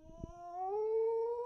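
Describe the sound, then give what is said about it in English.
A dog in a video sent in by a viewer gives one drawn-out, tuneful howl that slides slightly upward and holds steady, fairly soft, with a few faint thumps at the start and no talking. “You guys have been sending us videos of your dogs.”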